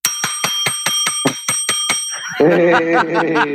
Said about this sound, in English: I've got like a diner bell here for you. So I apologize for the weakness of this bell, but I'm going to ring it for you anyway.